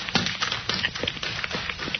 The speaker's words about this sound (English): Yes, a man running up the road, past the two fellas trudging home.